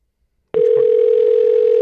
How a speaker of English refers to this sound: Get the phone! That far. Is that what they say? Could you get the phone? Pick up the fucking phone.